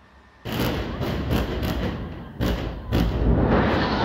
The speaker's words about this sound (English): Well, this footage shows large explosions outside the Indonesian hospital in Gaza. The hospital was not directly struck, but it was hit by shrapnel.